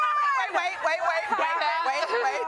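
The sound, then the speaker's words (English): A studio audience calls out votes on who wins a debate, many overlapping voices shouting loud all at once in a continuous burst of babble for a couple of seconds. “I like the crowd participation.”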